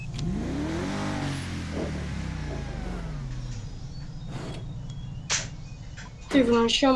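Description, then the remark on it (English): A car engine in a video game revs with rising and falling pitch, loud and steady for several seconds, as the car keeps falling through the map, then settles into a lower drone before a burst of voice-like sound near the end. “Why must you always fall through the map, you stupid car?”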